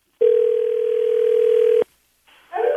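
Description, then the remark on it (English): A steady, unbroken telephone dial tone, as a radio show host calls a woman back, holds one pitch for about a second and a half, then cuts off abruptly. After a short silence, a louder, busier tone starts up. “All right, let's get her back on.”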